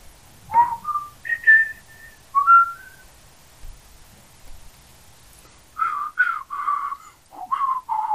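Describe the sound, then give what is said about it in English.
Someone whistles a short, wandering tune, clear, in two phrases of rising and falling notes separated by a brief pause, with no talking. “Isn't it hard to whistle on demand?”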